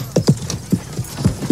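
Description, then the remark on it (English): Horse hooves clip-clop on a hard surface in a steady, uneven rhythm, roughly six or seven sharp hoofbeats in quick pairs, moderately loud with no talking. “Now, this here horse is broke. That horse there, green broke.”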